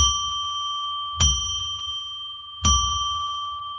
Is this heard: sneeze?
no